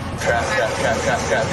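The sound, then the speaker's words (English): A truck engine strains as it accelerates onto the interstate, its steady roar blending with loud, continuous highway traffic noise, with faint muffled voices mixed in. “I cannot believe I'm getting on the interstate. Accelerate. Stay on this side, accelerate.”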